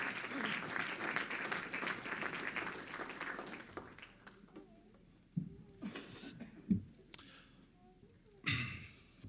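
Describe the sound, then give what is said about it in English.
An audience claps their hands in the presence of the Lord in a dense, steady burst of applause for several seconds, which then thins out into scattered claps, murmurs and a few sharp breathy sounds. “Why don't you, one more time before you're seated, why don't you clap your hands in the presence of the Lord tonight?”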